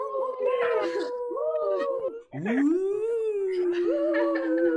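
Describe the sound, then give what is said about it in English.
Several people on an online call unmute their microphones and imitate wolf howls together, long wavering tones that rise and slide, overlapping loudly and continuously with a brief pause midway before another rising howl. “So for everybody here, go ahead, gently unmute your microphones, make some whooping, whatever wolf noises or anything else, and say hello to everybody.”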